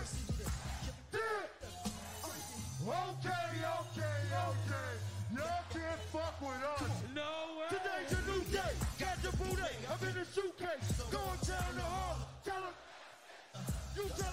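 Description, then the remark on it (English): A loud concert crowd yells and cheers along with live music, voices blending into a dense, continuous roar with strong bass underneath throughout. “This song right here slapped. They had the crowd going.”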